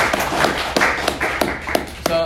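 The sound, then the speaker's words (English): Scattered clapping from a small group responding to a speaker's decision to delete a news app from his phone, a steady patter of sharp hand claps with regular accents about every third of a second, mixed with murmuring voices underneath. “I'll take the clap for the.”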